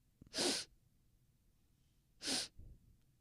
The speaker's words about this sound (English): Oh, I was about to sneeze. Okay, I'm not.